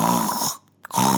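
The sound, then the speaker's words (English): A voice imitates snoring: two loud, rasping snore breaths separated by a short pause with a faint puff of air, without other talk. “You could hear only snoring all around.”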